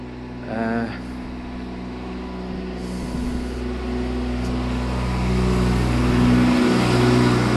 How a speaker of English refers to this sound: That's another thing, there's trucks running around here, which presumably are trying to protect the animals, but they're going at quite some speed.